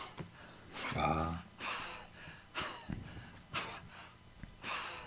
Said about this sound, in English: Captioning, gasping for breath.